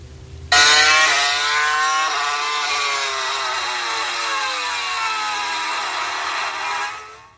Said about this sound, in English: Sound like that anymore, do they? They do not sound like that. They don't sound like that anymore. That's a proper car.